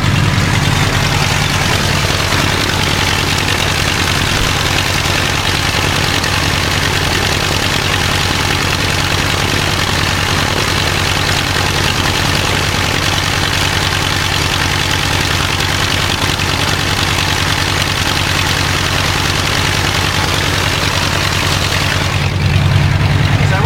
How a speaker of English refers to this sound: on a normal day, you probably idle it for 3 or 4 minutes before you're ready to take it out, taxi it out for a run-up.